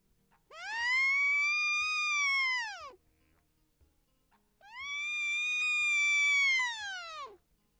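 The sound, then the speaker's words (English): A simple wooden deer call, made of two strips of wood with a small space between them and a rubber band stretched across that space, blows two long, nasal bleats, each about two and a half seconds, rising slightly in pitch, holding, then sagging at the end, with a short pause between. “The sound of a deer call.”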